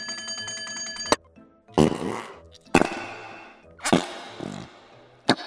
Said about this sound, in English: Found my fart putty!